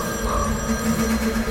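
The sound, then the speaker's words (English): A telephone rings steadily and fairly loudly in quick repeated bursts, with no voices. Low background hum and noise sit underneath. “Pick up the phone”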